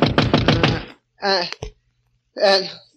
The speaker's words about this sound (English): Then I fell into a deep sleep, and then... A knock on the door awakened me.